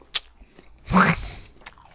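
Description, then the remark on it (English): Wet, squishy chewing of blackberries from the fridge: a brief crunchy bite, then a louder burst of juicy mastication lasting about half a second, followed by a faint smack, with no talking. “But I got blackberries in the fridge.”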